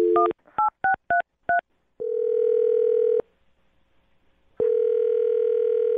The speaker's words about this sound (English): Well, I'm going to dial her phone number right now, see if we can get her on the phone, and find out why she's not calling you back, okay?